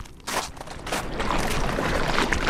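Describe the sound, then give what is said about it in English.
Ottawa River waves lap against the shoreline at Britannia in Ottawa, behind the water purification plant, in a steady, hissing wash of water, with soft splashes rising and falling continuously, the Deschene Rapids chugging in the background, and no voices. “So we're right along the shoreline of this amazing Ottawa River, and you can hear the waves lapping.”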